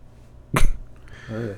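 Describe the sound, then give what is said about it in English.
A person imitates a sneeze: one loud, sharp burst of breath, then a short voiced trailing sound after a brief pause. “The evil in me wanted to sneeze so bad.”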